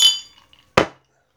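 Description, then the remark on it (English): Two glass clinks from a drinking glass holding a purple drink with ice: a bright ringing tap that decays quickly, followed by a sharper, fuller knock of the glass being set down or struck. No voices. “Let's have a little bit of purple stuff, man. You got any? You got any in the glass?”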